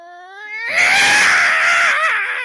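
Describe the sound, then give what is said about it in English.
A voice imitates a yowling cat: a single drawn-out, loud caterwaul that starts as a tonal whine and swells into a harsh, raspy screech lasting about two seconds. “that is an impression of the Black Cat from the movie The Black Cat”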